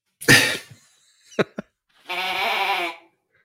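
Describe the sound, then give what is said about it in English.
A blown novelty sheep call, made in Chicago around 1900 to 1906 and marked "sheep", gives a buzzy, wavering bleat lasting about a second, preceded by a harsh breathy burst and a couple of small clicks. It is fairly loud, with no talking. “And he also made this one sheep call.”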